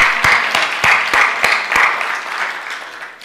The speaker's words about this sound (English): Let's just praise God for people like that. Can we just praise God for people like that? That young man, let's give him applause today.